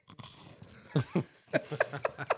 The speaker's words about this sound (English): Chocolate. Take a bite of it. He's used to thicker ones.